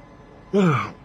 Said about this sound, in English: See, I'm getting sleepy. I'm just yawning and crap.